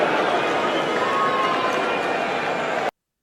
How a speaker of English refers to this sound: I know there's a tradition in Australia, politicians get booed at sporting events, but not to that extent.